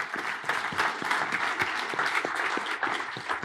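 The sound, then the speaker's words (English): A room full of back-office colleagues gives themselves a round of applause, clapping steadily, dense overlapping hand claps forming a continuous wash of applause at moderate volume, with no voices standing out. “I feel, you know, just amongst us, you know, let's give us all a round of applause for what we did as a back office.”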